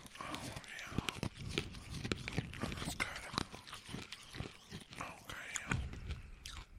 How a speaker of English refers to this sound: All right, raspberry. Here we go. 1, 2, 3, go. I'm going to bounce these around in my mouth a little bit here. You know, for the listeners that like to hear chewing.